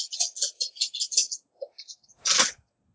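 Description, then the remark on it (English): Eight dice rattle and clatter across a table during a game in a quick burst of sharp clicks, a few scattered taps as they settle, then one louder, fuller clack near the end. “Dice like music.”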